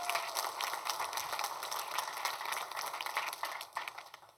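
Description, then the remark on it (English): An audience claps continuously for about four seconds, a dense, steady patter of many hands with no voices, tapering slightly at the end. “Let's give her another hand clap.”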